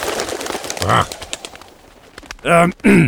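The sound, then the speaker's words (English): A bird calls out in a few loud, squawking bursts: one brief cry early on, then two stronger calls near the end, over a busy, chattering background. “Yeah, watch it, bird!”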